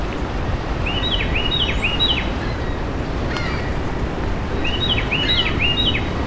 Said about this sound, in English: Carolina Wren. A little brighter sounding than usual. You might be adjusting song because of the waves.